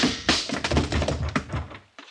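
A punch lands and a woman falls to the floor: a flurry of dull, heavy thumps and knocks over about two seconds, loud at first and trailing off, with no voices.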